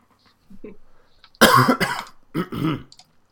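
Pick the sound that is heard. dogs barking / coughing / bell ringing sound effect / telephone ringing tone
coughing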